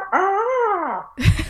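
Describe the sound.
A person imitates a hawk call: a single loud, drawn-out cry lasting about a second that rises and then falls in pitch, followed by a brief breathy, noisy burst.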